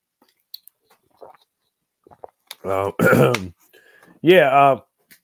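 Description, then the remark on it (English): Someone takes a quick sip of water: faint wet mouth clicks and a soft swallow, followed by two short voiced exhales, like a satisfied sigh after drinking. “I got to take a quick drink of water.”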